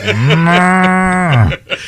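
A single long cow moo, loud, holding a steady low drawn-out tone for over a second before trailing off, with no voices around it.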